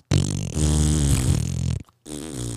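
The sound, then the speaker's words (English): A man, as the character Peacemaker, blows loud, buzzing raspberry fart noises with his mouth at Etta Bayou: one long sustained blat lasting over a second, a brief pause, then a shorter sputtering one, clear. “And the whole first minute and a half is just Peacemaker making fart noises to Etta Bayou about how she's betrayed him.”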